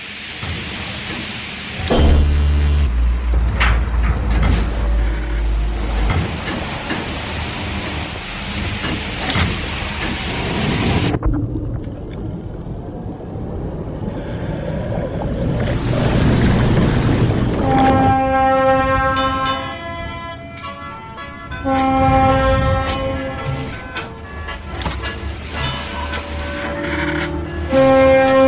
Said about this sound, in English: Chosen mode of transportation, the MR Road, an old French-era steamer, refitted for more current-day needs. A big freaking boat.